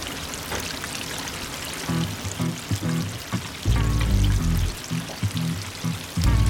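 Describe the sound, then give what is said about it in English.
Busy kitchen noise at a KFC concept store in Hong Kong, where fried chicken is made: a constant loud hiss like sizzling fryers or running water, broken by repeated low humming, thudding bursts from equipment, with a heavier stretch midway and again at the end. No talking. “And we're in the kitchen. As you can hear.”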